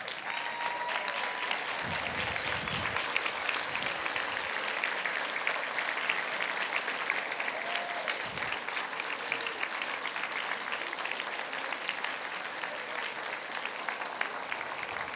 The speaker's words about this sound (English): So what I want to do is I want to honor all of you moms with a standing ovation, and I want you to get to stay seated. Okay, so you stay in your seat, and if everyone else will stand and give our moms a round of applause, a standing ovation.